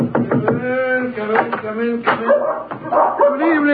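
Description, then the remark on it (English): Dr. Watson's dogs, one called Roger, bark and yip excitedly in a Sherlock Holmes radio drama, a rapid, overlapping run of high, eager barks that continues without pause for several seconds. “The dogs seem very pleased with themselves tonight.”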